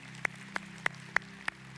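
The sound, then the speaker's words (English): Applause at a church service for people's decision to accept Christ, heard as five sharp, evenly spaced claps, about three per second, over a steady low room hum. No one speaks. “Can we just give a round of applause in that decision today?”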